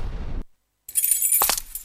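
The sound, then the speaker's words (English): A bright metallic jingle of keys shaken for about a second, with sharp clinks, after a brief rumble and a short silence. “And there he comes, the man with many keys.”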